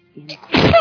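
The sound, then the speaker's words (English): A single loud sneeze with a short voiced intake building up before the sharp, explosive burst that trails off quickly. “Bless you. God bless you.”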